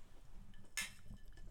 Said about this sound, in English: So, we'll see. Let's do a little clinkety-clink it. Clink it.